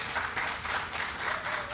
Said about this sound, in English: So a round of applause for them.